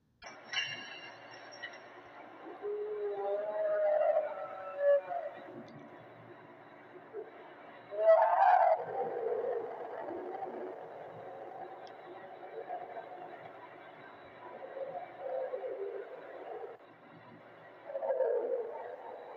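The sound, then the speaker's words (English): A continuous metallic rattle and grinding drone, with low, wavering moan-like tones that swell up several times, loudest near the middle and again toward the end. “So there you have it, chains rattling and mysterious moans from beneath the Euphrates River.”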